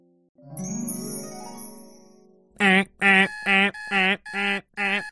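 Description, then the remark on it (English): An alarm clock rings in six loud, evenly spaced bursts, preceded by a softer rising tonal swell that fades just before the ringing begins. “It was 4:30 a.m. and Alabaster Zero's alarm clock was going off at the start of a brand new day.”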